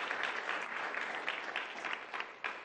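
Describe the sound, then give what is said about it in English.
An audience at a 10:30 service claps their hands in a dense, steady burst of applause that holds at a fairly even level throughout, with no voices standing out over the crackling patter. “You can clap your hands right there again if that's been you.”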